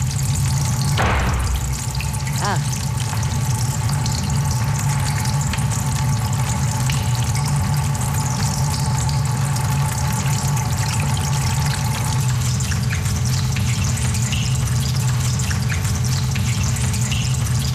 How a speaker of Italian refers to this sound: Questo rumore di acqua